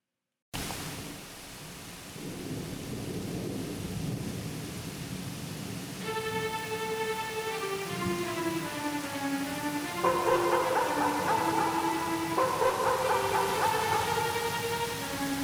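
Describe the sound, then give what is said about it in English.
A steady hiss of heavy rain with a low rumble of thunder early on, joined midway by eerie, wavering tones that rise and fall over the downpour. “Daisy is out there, Grandfather, in the storm.”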